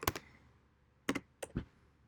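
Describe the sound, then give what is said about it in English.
Typing on a computer keyboard to look up the NBA All-Star list: a handful of crisp key clicks in short irregular bursts, separated by a quiet pause, with no voices. “You be sounding official typing over there.”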